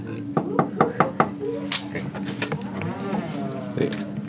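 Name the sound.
knocking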